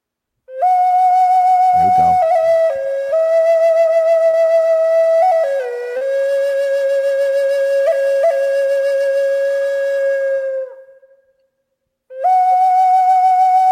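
A loud, clear whistled melody from a house music track, with long sustained notes that glide between pitches. It fades out near the end, pauses briefly, then comes back in.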